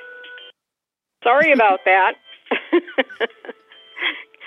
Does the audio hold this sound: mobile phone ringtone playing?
yes